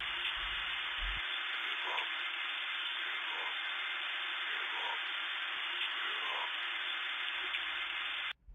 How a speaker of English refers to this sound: That voice. What was that voice doing in the static of a numbers station? And why did I feel like I had heard that voice before?